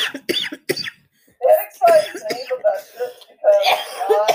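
A loud fit of coughing: a few short, sharp coughs, a brief pause, then a longer run of hoarse, raspy coughs and throat-clearing rasps that trail off unevenly.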